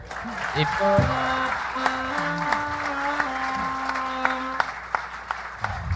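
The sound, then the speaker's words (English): A live audience breaks into steady, sustained applause after a stand-up comedian's joke, dense clapping that fills the room for several seconds, with a few sharper individual claps popping out and a voice faintly underneath. “You got a big applause break there.”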